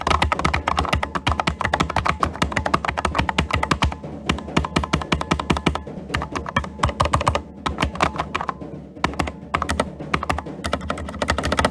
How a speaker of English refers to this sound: Alright, typed in the password for 5 doors. Come on. Island destruction in 2 minutes and 30 seconds. Come on. Types in the password for the rest of the doors. Alright, good. We got all the passwords in.